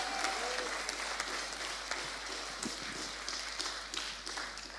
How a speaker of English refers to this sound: In the room, that was good cheering, by the way.